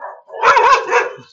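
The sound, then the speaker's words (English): A dog in a neighborhood barks a couple of times in quick succession, a harsh, fairly loud bark with a yelping edge, and no one is speaking over it. “Oh my goodness, those freaking neighborhoods, so many dogs.”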